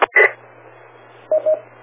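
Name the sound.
telephone dialing tones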